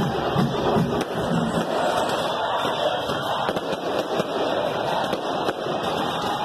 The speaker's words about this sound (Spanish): Esos no son disparos, tranquilos, es pólvora.